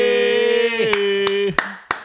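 Four sharp hand claps land at an even, moderate pace over a sustained, humming tonal note that slowly dips in pitch, then cuts out near the end.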